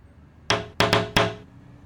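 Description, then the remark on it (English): Four sharp knuckle taps on a car window in an uneven rhythm, each a bright, hard knock with a brief ringing tail, fairly loud with no voices. “Perplexed by not getting the time of day, he tapped the window again a little bit harder.”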